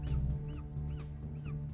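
A bird honks repeatedly in quick, rhythmic calls, like a goose, moderately loud over a steady low rumble. No one speaks.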